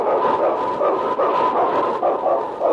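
A pack of sled dogs (huskies) barks and yips in a dense, steady chorus, loud, with overlapping calls bursting out every fraction of a second and no one speaking, from the radio show Sergeant Preston of the Yukon.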